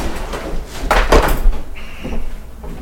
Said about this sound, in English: now, that thing online where everybody goes like, you know, and they're making a cyber turkey, and the guy just like slams everything. Have you ever seen that?